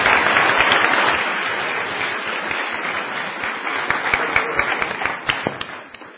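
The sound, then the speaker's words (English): A church audience breaks into a full round of applause for a young girl leaving the creche to go up to the Little East group, dense steady clapping from many hands that stays strong throughout, with sharper individual claps popping out before it begins to thin at the end. “Okay, so give her all a big round of applause.”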